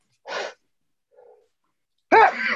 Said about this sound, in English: Sorry, I'm going to sneeze.